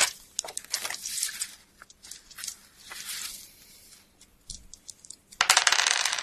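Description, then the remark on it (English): Dice clatter and rattle across a hard surface for a spot hidden roll, a quick run of sharp clicks, pausing briefly, then tumbling again in a louder burst at the end. No one speaks. “Make a spot hidden roll.”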